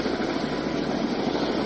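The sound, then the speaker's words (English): A National Guard helicopter used by swift water rescue teams for flood rescues in North Carolina flies overhead, its engine and rotors making a steady, loud, broad roar with no clear rhythm or break for the whole short stretch. No voices are present. “There are more swift water rescue teams and Hilo aquatic rescue teams using National Guard helicopters.”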